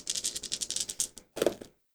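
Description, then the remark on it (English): Dice are grabbed and rolled for a perception check in a game: they rattle and clatter in a quick run of small clicks for about a second, then after a brief pause tumble loudly across a hard surface before stopping, with no one talking. “I'm gonna have Tina roll a perception check. Yeah. Which means I need to go grab my dice.”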